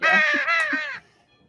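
A crow gives one loud, harsh caw lasting about a second, slightly broken in the middle, then trails off into near silence.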